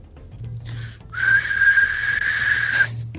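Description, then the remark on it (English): A person whistles, trying to hit a 2600 hertz tone but staying below 2000 hertz: a long, steady high-pitched tone held for nearly two seconds after a short breathy false start, fairly loud, with no talking. “Can you whistle 2600 hertz first?”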